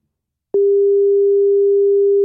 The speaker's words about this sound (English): Okay, so here we go. This is ringing. Trust and believe.